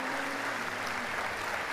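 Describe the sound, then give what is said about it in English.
A crowd gives God a hand clap of praise for the new year, clapping steadily in a dense, continuous wash of many hands applauding at a fairly loud, even level with no voices standing out. “Well, if you're ready for what God's going to do in this brand new year, go ahead and give him a good hand clap of praise.”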